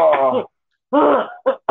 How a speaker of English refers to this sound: This one, she knows. She coughing now because she understands that I mean it.